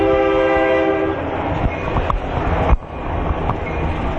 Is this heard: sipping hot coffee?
no